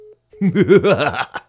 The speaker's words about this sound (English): There was a little interference there, like I explained. I forgot that my phone, I should turn off airplane mode, or put on airplane mode. That fixes the static issue right there.